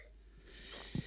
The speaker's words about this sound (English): So, talk about maybe sniffling right into the microphone.